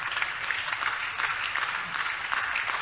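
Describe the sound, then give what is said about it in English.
An audience claps for God during a church service in a dense, steady wash of applause, many hands blending into a continuous crackling patter with no voices standing out. “Clap for God.”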